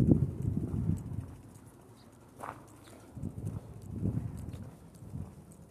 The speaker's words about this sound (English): Somewhere there's a bird. I hear it chirping.